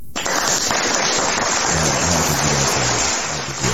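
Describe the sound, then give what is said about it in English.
A loud, dense round of applause bursts in almost at once and keeps going steadily for several seconds, with low cheering voices mixed in during the second half. “We need a longer round of applause.”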